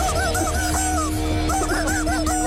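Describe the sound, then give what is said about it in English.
Squawky, honking chicken-like calls from a TikTok performer rise and fall in pitch to carry a song melody, loud and continuous over a steady backing track, with no talking. “Would you like to hear more from …?”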